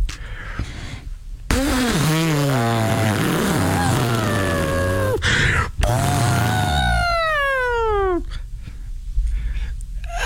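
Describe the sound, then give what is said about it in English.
A man's voice imitates an elephant trumpeting: two long, loud, brassy blasts with wavering, sliding pitch, the second rising high and bending down before breaking off into quieter breathy noise. “I've taken some time now to kind of practice, and I think I can make a better elephant sound than I did earlier on this morning.”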